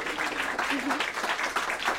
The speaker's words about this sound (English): Y'all gotta clap too out there, you know, if y'all watching it with me, y'all gotta clap too, you know what I'm saying?